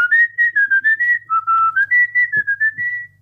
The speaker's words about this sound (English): Kahit mahaba? Even if it's a longer whistle, kaya mo? Kaya po.